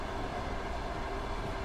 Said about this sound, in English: Who among us hasn't gone out for a nice public nap only to be bisected at the waist by a freight train?